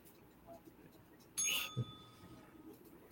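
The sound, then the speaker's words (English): A single bright digital bell ding strikes suddenly and rings out with a clear, sustained tone that slowly fades over about a second, loud against a quiet background murmur. “The bell, I got the bell.”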